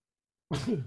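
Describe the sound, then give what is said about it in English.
A single sudden sneeze bursts out of silence, loud, with a breathy, voiced burst that cuts off quickly. “Bless you.”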